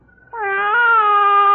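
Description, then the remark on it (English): A person imitates a cat's meow as a signal: a single loud, drawn-out nasal 'meow' that rises slightly in pitch and holds steady, with nothing else around it. “Now, I meow twice.”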